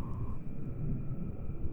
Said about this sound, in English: the music starts to fade out until you only hear the sound of the torus itself, the wind, the weird mechanical hum and beating of Nibiru.